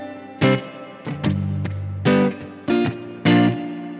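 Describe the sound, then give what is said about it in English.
Electric guitar chords strummed one after another through a spring reverb pedal, each strum ringing out with a washy, echoing tail, loud with no talking. “That's probably too much decay there for a. We'll turn the modulation off there too. So of course now the spring has two levels of modulation in addition to off.”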